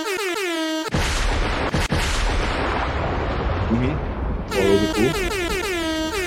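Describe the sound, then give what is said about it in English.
Loud, blaring air horn blasts in quick succession, with a burst of booming, explosive noise in the middle before the honking returns at the end. “Air horns, air horns.”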